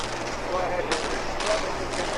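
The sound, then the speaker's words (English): A quick series of three or so sharp bangs, like demolition charges, evenly spaced about half a second apart, in old digital camera footage of Building 7 before the building falls. They sound muffled beneath a steady hiss of background noise. “You'll see the bangs go off, and then the building will fall free fall, just like in a demolition.”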